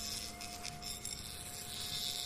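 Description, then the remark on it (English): A steady, continuous mechanical whine of drilling with a buzzing, insect-like edge, holding one pitch over a bed of hiss for the whole stretch, fairly quiet with no voices. “Ooh, that drilling is getting nasty.”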